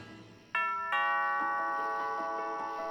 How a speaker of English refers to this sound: Dana rang the doorbell and stepped back off the mat.